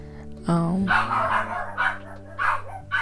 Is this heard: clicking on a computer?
no